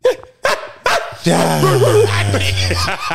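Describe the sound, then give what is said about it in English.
A dog gives three quick, sharp barks, then lets out a longer, drawn-out whining yowl that slides downward in pitch and fades out. “Stop barking.”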